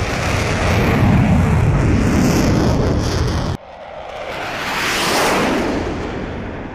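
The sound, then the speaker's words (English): A jet aircraft in the backyard of Xavier's School for Gifted Youngsters roars loudly, cuts off abruptly, then a second rushing whoosh swells and fades as it passes by. No one speaks. “What kind of school has a jet in the backyard?”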